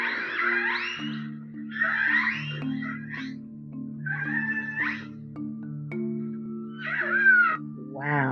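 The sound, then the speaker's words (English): Orca calls: a series of squealing, wavering, high-pitched cries, several in a row with short gaps, over a steady low humming drone that runs throughout. “All right, boys and girls, here are a few more sounds, and then I'm going to give you some more interesting facts.”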